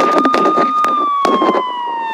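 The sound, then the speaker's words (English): A police car siren holds a loud, steady high wail that slowly sinks in pitch, while sharp knocks and rattling clatter break in over it. “Oh man, here comes the fuzz.”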